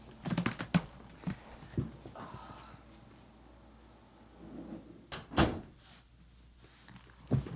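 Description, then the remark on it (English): A door is handled and shut: a quick cluster of knocks and rattles, then a firm thud partway through and a softer bump at the end, with no talking. “I gotta get up and shut the door because he ran out so fast.”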